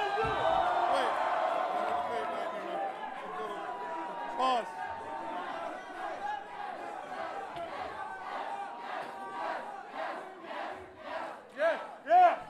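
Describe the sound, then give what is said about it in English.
A large wrestling crowd roars and shouts wildly, a dense wall of overlapping yells and cheers that swells into rhythmic surges and loud bursts near the end. “And so this is, the crowd was so nuts in there, they couldn't pick one person to be in it, so they brought everybody up to a last ditch effort to plead the case of the crowd.”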